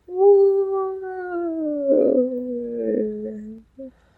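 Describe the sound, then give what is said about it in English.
A voice imitates an air raid siren, holding one long, steady tone for about four seconds that slowly slides downward in pitch, with a rough breathy patch midway and a short final blip. “Was that a wartime alarm or were you just sighing?”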